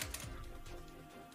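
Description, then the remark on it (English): A different die is rolled across a hard tabletop in a quick burst of sharp, rattling clicks that settle into lighter taps, fairly quiet, with no voices. “All right, well, I'll just roll a different dice.”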